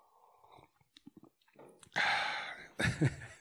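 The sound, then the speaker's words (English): A loud, noisy slurp of hot Dunkin' Donuts coffee being sipped, preceded by a few faint clicks and followed by a short breathy exhale and a second gulping burst. “Hold on, I'm going to take a sip of this Dunkin' Donuts coffee.”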